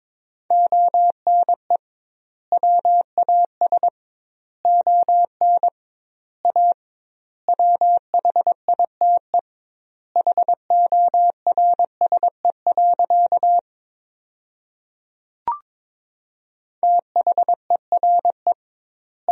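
Morse code beeps at a brisk 22 words per minute, sending sentences made from the 300 most common words with double word spacing: a single steady mid-pitched tone keyed in quick dots and dashes, with gaps between words, plus one sharp click near the end.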